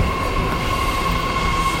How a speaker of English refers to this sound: The train to Mill Bay is approaching, and while I did want to interview people and get something a little bit more substantive for the podcast, I'm very happy to have a Monday with no wait.